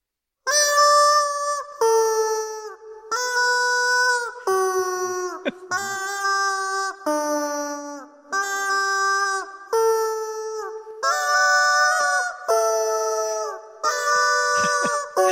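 Chicken squawks pitched into musical notes play Pachelbel's Canon as a melody, roughly a dozen sustained tones in a steady, even rhythm, loud with no talking.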